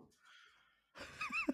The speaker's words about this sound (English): Hang on a second. My dog's going wild. He's getting very excited about this situation.